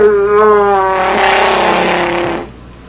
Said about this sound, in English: That is a fart. That's amazing. Can't fool me. F-A-R-T. That's what that is.